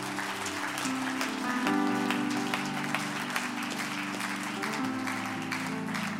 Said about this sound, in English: Clap your hands if you're thankful for the word this morning.